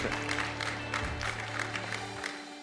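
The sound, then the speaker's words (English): A church audience claps together during a sermon in a steady patter of many hands, with sustained low organ-like tones holding underneath until they drop out near the end. “I thought I'd get a hand clap or an amen.”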